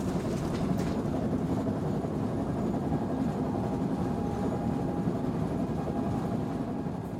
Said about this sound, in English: You can hear the train.